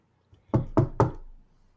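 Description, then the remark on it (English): Three sharp knocks in a quick, even rhythm, like knuckles rapping on a wooden front door, with a short hollow ring trailing after the last one. “Insert knocking noises here.”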